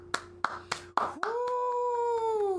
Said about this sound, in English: Getting a clap for that.